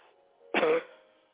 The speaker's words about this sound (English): Deep breath and cough. Deep breath and cough from your gut. Deep breath and cough from your gut.